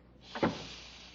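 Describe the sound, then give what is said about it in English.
A closet door swings shut with a brief scraping swish that ends in a single soft thud, followed by quiet hiss and no voices. “Turn on the light and I'll close the door.”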